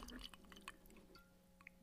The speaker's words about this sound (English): Did the mic pick up the pour? I guess we'll find out afterwards. I'm sure it did. We shall find out.